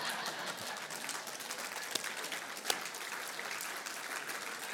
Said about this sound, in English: I'm glad y'all clapping, because when I went back and told the other brother that, hey, man, this cat is the one, thank God for reconciliation, but it was tough for a minute.